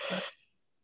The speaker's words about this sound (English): Oh, sorry, it was a big yawn. It's not because what you're talking about is boring.